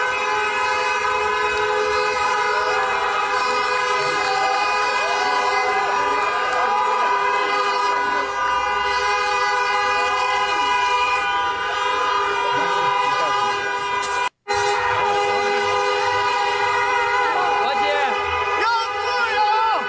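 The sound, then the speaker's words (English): Loud, nonstop horn honking, several horns blaring together in long sustained overlapping blasts, filling the whole stretch with only a split-second break near the end. “Was that honking?”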